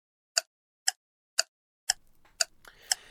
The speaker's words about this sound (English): cue the clock